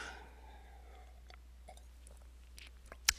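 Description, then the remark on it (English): A host sips and swallows water during the live show WGAN-TV Live at 5: a few soft wet mouth clicks spread over a few seconds, ending with one brief sharp clink, with no talking. “So give me a moment for some more water.”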